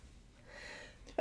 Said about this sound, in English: Gesundheit. Thank you.